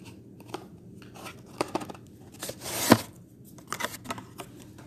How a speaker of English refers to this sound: So, I'm just gonna end that and I'm gonna shuffle a card. You know, it's about that time to shuffle some cards.